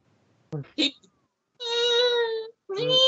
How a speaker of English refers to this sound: Why does the turtle sound like a cat?